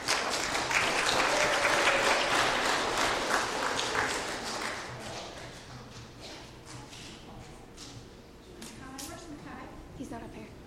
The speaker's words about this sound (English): If you guys want to give them a round of applause, that'd be great.